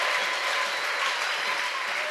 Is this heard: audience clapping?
yes